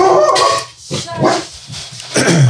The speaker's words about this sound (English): Dogs bark. And there we go. Sweet.